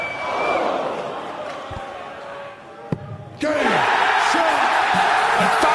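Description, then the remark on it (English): A large indoor crowd at the World Darts Championship murmurs, then suddenly erupts into a loud, sustained roar of cheering and whooping, carrying on to the end, as Fallon Sherrick becomes the first woman to beat a man in the tournament's history. “And the crowd was thrilled.”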